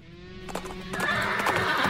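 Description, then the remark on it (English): A horse whinnies with a wavering, high-pitched cry as hooves clip-clop in quick, uneven strikes that grow louder and busier toward the end. No voices are present. “Hold your horses and pull your carriage to the side of the road.”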